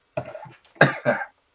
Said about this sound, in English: Nice cough.